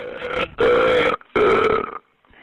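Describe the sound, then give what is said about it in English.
A man makes three long, loud burps in quick succession into a 911 emergency call, drawn-out and guttural, with a tinny, phone-line quality and no talking. “The problem is he keeps calling and burping into the”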